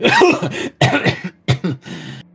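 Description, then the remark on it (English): A person coughs hard several times in close succession after breathing smoke and ashes, four harsh, raspy bursts with short gasping breaths between them, loud with no talking. “Yep, and you come out of it coughing.”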